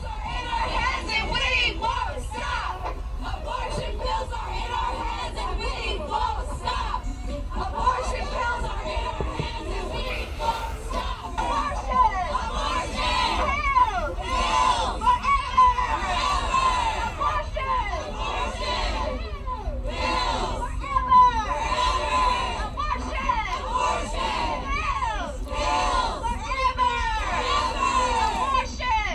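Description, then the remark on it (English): A large protest crowd outside the Supreme Court roars continuously, many voices shouting and screaming "abortion pills forever" over one another in a dense, loud babble with rising and falling cries that never let up. “show you what it looked like outside of the Supreme Court today with these left-wing nut jobs”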